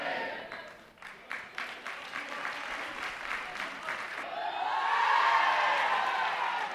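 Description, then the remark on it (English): A team claps in a quick, uneven burst of applause, then many voices rise together in a loud, sustained shout of "hooray" over the clapping, giving three cheers of "hip hip hooray" for the opposing team Fianna after a final. “3 cheers for Fianna. Hip hip. Hooray!”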